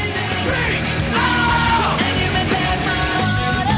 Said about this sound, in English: Wait, ready? Yell. There you go. With nice yell there. All kinds of vocal processing.